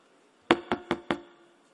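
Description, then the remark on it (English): Four quick, evenly spaced knocks on a door, sharp, rapping in a steady rhythm with no voices around them. “Because you are just going to knock on someone's.”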